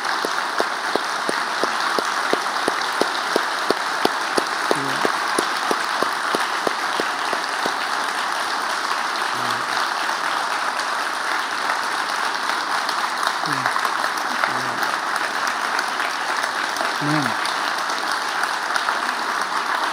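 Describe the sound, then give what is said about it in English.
A church audience applauds steadily for about twenty seconds on the 4th of July, thanking people who serve and help keep America free, many hands clapping in a dense, even wash of sound, with a few faint voices murmuring underneath. “And I think that we need to give at least a hand clap ovation of thank you and appreciation for them on this 4th of July.”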